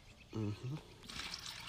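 A short vocal murmur comes first, then a soft, close splash and trickle of liquid, like a drink being poured and stirred, lasting about half a second.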